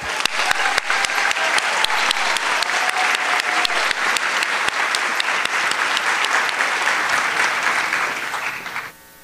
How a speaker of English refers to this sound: Please stand up for your round of applause.